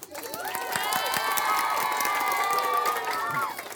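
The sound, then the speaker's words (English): A lively audience erupts in sustained cheering and shouting, with high children's voices and scattered clapping, holding steady for several seconds before tapering off, voting for an entry called Upside Down Dead Cat as the contest winner. “Who is the winner? Show your applause for Upside Down Dead Cat.”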